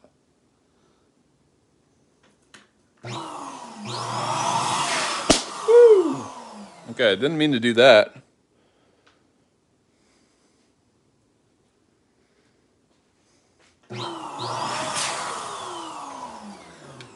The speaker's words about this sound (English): So it's nearly instant balloon blowing up. And if you're just joining me, this is the Leike electric balloon pump.